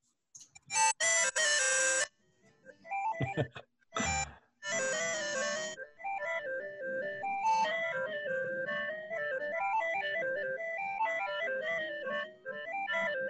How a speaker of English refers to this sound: So I wrote a demo program with the Nyan Cat and complete with the little Nyan Cat sound that I just play 15 seconds off here.